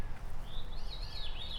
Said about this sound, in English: So, folks, it has that descending musical trill. Veer, veer, veer, veer.